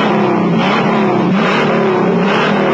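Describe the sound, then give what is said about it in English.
A loud Ford Mustang Mach 1 muscle car with a 428 Cobra Jet Ram Air V8 engine roars steadily, its deep throaty rumble rising and dipping slightly in pitch as it revs, with no voices over it. “An 8 so hot performing, it comes with its own poke-through air cleaner that jumps when the engine grinds.”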